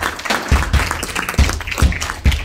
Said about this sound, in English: Let's give her an applause.